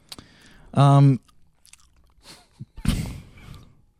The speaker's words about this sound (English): That's in my fucking ear. Is he just chewing right in your ear? I love that you're enjoying that, though.